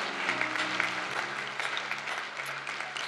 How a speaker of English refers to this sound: Sometimes people question why we would clap like that, but the Bible says that even just one person repenting, the angels in heaven rejoice. So we're just joining the heavenly crowd of being happy for the work of God.